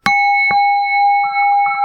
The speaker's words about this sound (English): Strike the bell, hold still.